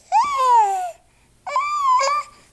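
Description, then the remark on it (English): A newborn baby babbles and cries in two short, high-pitched bursts separated by a brief pause, clear with no one talking. “And think about newborns.”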